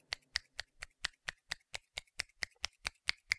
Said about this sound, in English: But this is literally one hand just kind of opening and closing against itself.